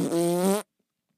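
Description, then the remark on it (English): A person imitates a fart with their mouth, a single buzzy, sustained raspberry lasting just over half a second, loud, followed by silence. “He does the fart noise.”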